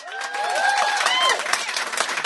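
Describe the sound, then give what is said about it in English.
An audience voting by show of applause breaks into steady applause for about two seconds, dense clapping mixed with a few high rising and falling whoops and cheers. “All right, by show of applause, who here, you can only pick one.”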